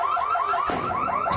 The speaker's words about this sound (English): The situation quickly got out of control that the store alarm went off.